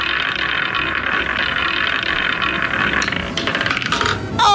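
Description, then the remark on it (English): A prize wheel in a Red FM radio call-in game is given a big spin for a caller trying to win. It makes a steady, fast stream of mechanical clicks that rattle on for several seconds before a brief change in tone at the end, landing on red. “Right, I'm going to give you a big spin here.”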